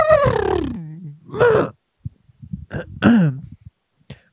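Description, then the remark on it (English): A person makes a horse-like vocal noise: a long, descending whinny-style cry, then a shorter rising-falling wail and a few quick throaty snorts and grunts. “You can fucking make a horse noise.”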